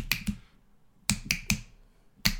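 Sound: finger snapping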